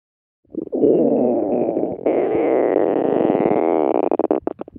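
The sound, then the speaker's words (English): A loud stomach rumble gurgles continuously for about four seconds, shifting to a higher, squeakier tone partway through and breaking into stuttering bubbly pulses at the end. “A stomach rumble.”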